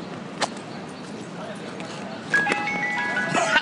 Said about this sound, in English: if you really want to mess with people, what you can do is change your ringtone to that of an ice cream truck.